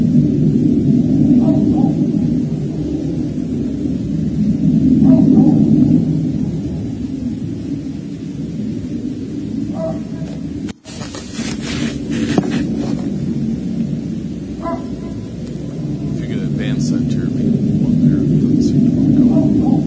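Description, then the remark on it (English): A deep, continuous rumble of the engines of many large German military transport planes flying in the sky, recorded on a phone, drones across the whole stretch, swelling and easing in waves, with a sharp crackle breaking through midway. “So this is the recording of what he was watching in the sky.”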